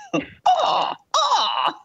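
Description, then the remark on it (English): A person imitates a hawk call: a brief rasp, then two drawn-out, harsh, screechy cries, each about half a second, loud and high-pitched, with the pitch sagging toward the end. “apparently that's not what a hawk sounds like.”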